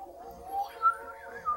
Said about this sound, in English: Let's see what the end titles sound like. UFO-y sounds.